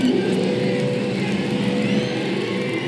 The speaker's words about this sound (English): He's blocked the throttle. He's blocked the throttle to keep it going.